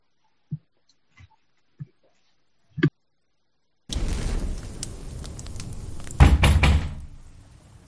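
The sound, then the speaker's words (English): Three heavy, evenly spaced pounds on a door ring out in an otherwise quiet space, followed by a sudden loud, sustained crashing and rumbling noise. “Three pounds at the door, our hearts pounding out of our chest.”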